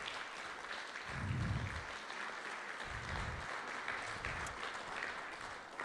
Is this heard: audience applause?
yes